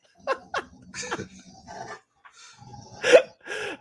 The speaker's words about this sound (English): First off, your dogs are going crazy.